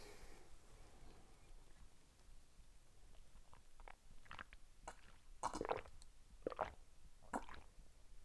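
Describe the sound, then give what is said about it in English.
Someone takes a few quiet sips of a beverage, with soft wet slurps and gulping clicks clustered near the end over faint background hiss. “Give me a little sippy sip of my beverage before we do this.”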